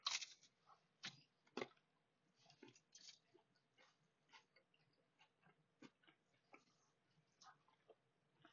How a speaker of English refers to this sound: Please excuse any chewing you may hear, as this is completely unplanned.